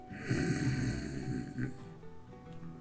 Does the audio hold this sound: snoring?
yes